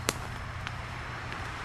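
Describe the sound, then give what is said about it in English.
Sticks and branches from trees that came down in a storm snap under walking shoes in a forest: a sharp, loud crack, then two fainter snaps at an even walking pace, over a low, steady rumble. “A couple of trees came down in the last storm, and so there's lots of sticks on the ground. My shoes are breaking the branches as I walk over them.”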